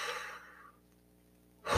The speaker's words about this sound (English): Exhale. Deep breathing, right? Because look, this one thing will get you out of your head and for you to get into your body.